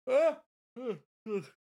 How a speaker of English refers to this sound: Oh, sorry, talking about hype made me yawn.